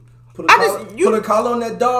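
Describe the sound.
A person imitates a dog barking, producing several loud, voiced bark-like yelps in quick, uneven succession, with a low steady hum underneath.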